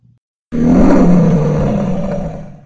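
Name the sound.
imitated lion roar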